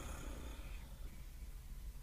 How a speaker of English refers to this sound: And as they did so, they stopped stroking the cats. And one by one, the cats stopped purring.